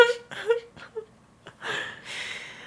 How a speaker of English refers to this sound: She's snoring.